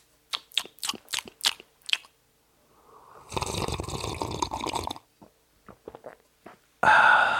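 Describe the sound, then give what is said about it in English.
Sipping of hot Darjeeling tea: a few light clicks of handling, then a long breathy slurp lasting about two seconds, followed by small taps and a sudden noisy burst at the end. No talking. “I'm going to take a little sip of my tea.”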